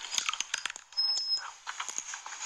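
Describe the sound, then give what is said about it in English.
A woman in an Instagram ASMR eating video chews honeycomb: wet, sticky chewing with crackly smacks and crunchy bites in quick irregular bursts, loud with no talking. “Check out this chick. She's eating a honeycomb.”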